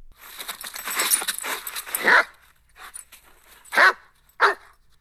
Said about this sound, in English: All right, well, just to kill some time, here is Mac the Wolfhound just barking for a few seconds.